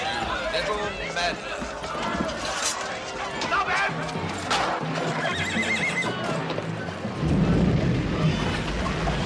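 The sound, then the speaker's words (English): A horse whinnies loudly, its shrill neighs rising and falling over a steady clatter of galloping hooves, with the hoofbeats growing heavier and louder toward the end, as Galen escapes with the aid of the horse. “Galen escapes with the aid of a horse that just comes out of nowhere.”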